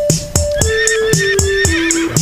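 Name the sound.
horse neighing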